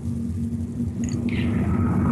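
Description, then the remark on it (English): A big truck rumbles past a house in a little neighborhood with a deep, steady low engine drone, joined midway by a brief higher-pitched whine and hiss. No one speaks. “It's weird that that's going right by my house.”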